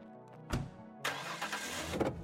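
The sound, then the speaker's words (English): A truck engine cranks and catches with a short burst, then roars up loudly as the vehicle peels away, with a gritty rush of spinning tires and gravel under the revving motor. “watched the truck peel out, spitting gravel. After a brief rumble, the passenger side door closed during the turn.”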